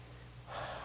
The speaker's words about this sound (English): take some deep cleansing breaths. In through your nose, out through your mouth. So like this. Like real deep ones.